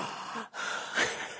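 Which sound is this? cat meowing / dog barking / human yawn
human yawn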